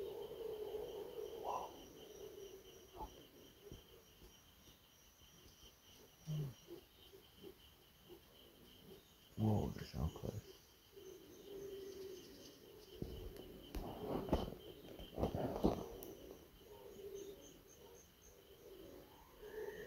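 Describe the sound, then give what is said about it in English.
A wild chicken gives a series of low, hooting calls at irregular intervals, a few louder bursts standing out, over a constant high buzzing of insects. “The sound nearby. Another kind of wild chicken.”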